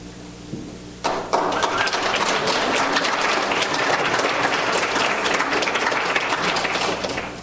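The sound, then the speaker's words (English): After a second of low hum, a church audience breaks into dense, steady applause for the church elders standing up, staying loud and sustained to the end, with no one speaking over it. “Just do golf clap, because we caught that a ton today, all right?”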